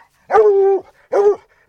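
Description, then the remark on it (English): A Walker Red Tick hound bays twice in quick succession after picking up fresh scent while hunting a cat in a canyon, a drawn-out tonal howl followed by a shorter one, loud, with no voices present. “Within minutes, the Walker Red Tick hounds have picked up fresh scent.”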